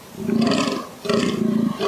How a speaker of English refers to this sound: That's a fallow deer. Is that what that is? Oh, they have a weird noise. Yeah, listen to it. It'll play.